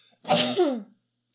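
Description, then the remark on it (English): A single sneeze, sharp, bursting out in one quick noisy blast with a short breathy tail, followed by silence. “that time it was a sneeze.”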